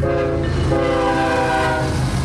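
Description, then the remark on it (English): A BNSF freight train carrying goods imported from the Pacific Rim in stacked shipping containers rumbles past on a former Santa Fe main line linking Chicago with the ports of Los Angeles and San Diego. Its horn sounds a loud, sustained multi-tone blast throughout, with heavy low-end rolling noise underneath. “Trains like this one bring goods imported from the Pacific Rim to America's heartland.”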